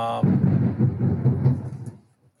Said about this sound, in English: Oh, no, it's here. It is here. God. The rain is here. It is thumping down here. There you go. Absolutely thumping down here.